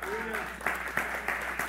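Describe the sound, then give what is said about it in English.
Steady applause from an audience, a dense wash of many hands clapping at once, with a brief rising whoop at the start and a few sharper claps standing out. “If you're not clapping, I hope you got to wait in line for 1,000,000 years before you get to see him.”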